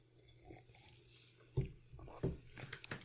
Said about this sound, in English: Cheers to you. Cheers. Take a little sip.